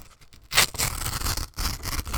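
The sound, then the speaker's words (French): Acid-free paper from the Garox company being torn, a loud, grainy, crackling rip that runs for about a second, breaks off briefly, then continues in a second grainy tearing stretch, with no voices. “C'est le côté non acide. Sinon, là... Sinon, la déchirure...”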